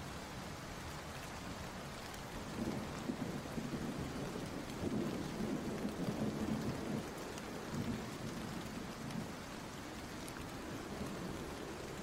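rain and thunderstorm

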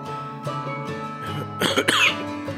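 coughing fit

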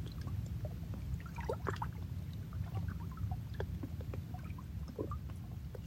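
water flowing over rocks

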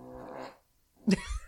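dog snoring

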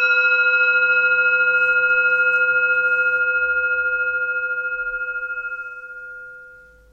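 gong being rung

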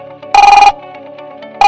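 telephone ringing

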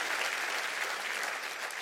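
church audience clapping hands

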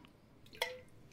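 drinking water

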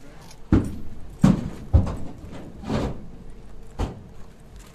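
horse hooves

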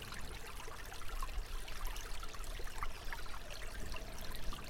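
flowing river water

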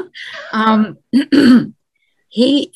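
throat clearing

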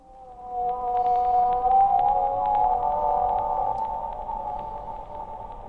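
whale song

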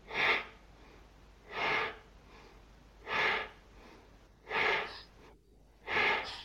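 slow

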